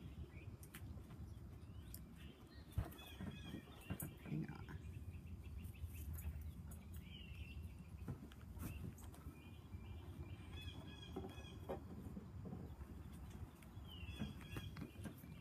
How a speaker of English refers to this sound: Can you hear the birds?